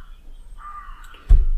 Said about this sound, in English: Well, you definitely notice some wildlife. A lot of birds flying around.